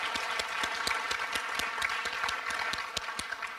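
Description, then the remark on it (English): Steady audience applause at an Iowa City Human Rights Commission ceremony, given for youth performers, fills the whole stretch, a dense wash of many hands clapping with sharper individual claps popping out irregularly. No voices break through. “Before we close this ceremony, let's give another round of applause for all the great acts our youth are performing, and for our youth ally,”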